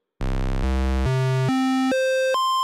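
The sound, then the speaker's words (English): A buzzy, hollow square wave tone, a basic waveform from a synthesizer oscillator, steps upward through six sustained pitches, each held about half a second at steady, fairly loud volume, with no voices. “Square waves.”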